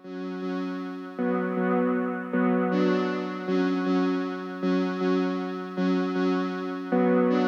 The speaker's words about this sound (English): You can hear there where the timbre of the sound changes, because obviously the keyboard was split. So some of the chords have this dark sound and then it goes light there.